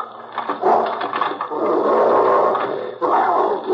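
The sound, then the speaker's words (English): Fred Harlan's dog growls low and steadily, a continuous rumbling snarl that swells and eases, breaks off briefly near the end, then resumes. No one speaks. “There's no one here but the dog.”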